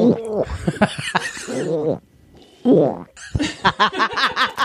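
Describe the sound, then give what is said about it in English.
A person imitates a dog retching, with a run of throaty, gurgling heaves, a brief pause, then rapid gagging hacks that build toward the end, loud. “But I'm also really good at imitating the sound a dog makes when they're trying to barf.”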